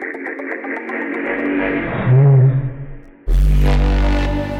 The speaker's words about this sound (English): For me, those sounds tend to be like big, ominous, bassy sounds. And for me, that's just like my happy place, you know? Here's one I made earlier. You'll see what I mean.